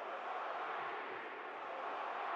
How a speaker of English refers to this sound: Crowd chanting, push off P.